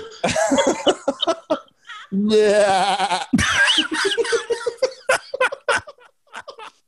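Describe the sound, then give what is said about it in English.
A goat lets out a loud, quavering bleat lasting about a second, framed by bursts of laughter and coughing-like sounds before and after. “Dude, there's nothing funnier than a fucking goat going for it.”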